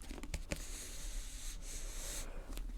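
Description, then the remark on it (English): Steady scratchy rubbing of a pen nib across paper as printed letters are coloured in, fairly quiet, with a few sharper ticks as the pen strokes back and forth. No voices. “And I don't know about you, but this is something that I do. Board, I colour in all the letters.”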